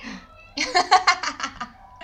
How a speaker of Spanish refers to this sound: Bueno, mi gato es un... Ahí habló. Ay, pero se escuchó.